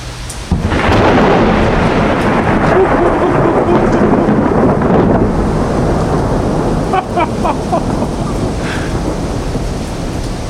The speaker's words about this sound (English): So, ladies and gentlemen, from Rotterdam, the Netherlands, this was a short intermezzo. Thunderstorms being born above Rotterdam City. And today it's July 9th, 2007.